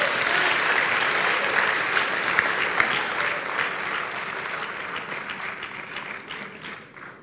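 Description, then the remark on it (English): A church audience claps steadily after a prayer, a dense wash of many hands slapping together at fairly high volume throughout, easing slightly toward the end with no speech over it. “Clap your hands.”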